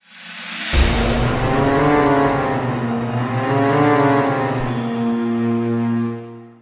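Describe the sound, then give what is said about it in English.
A steam train whistle sound effect for the Hogwarts Express blows one long, loud, steady blast lasting several seconds, with a rumbling low undertone and a brief hiss near the end. No one speaks. “Teach us what we need to know about Hogwarts Express choo-choo.”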